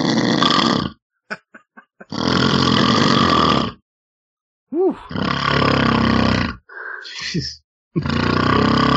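A man snores with heavy, rasping snores, each lasting one to two seconds, separated by short silent pauses, with a few rough sputtering breaths in between.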